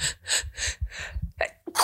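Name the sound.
sneeze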